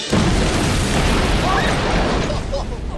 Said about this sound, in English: But there was a trick we had to keep the kids watching. In the first 5 minutes of every show, we would blow something up.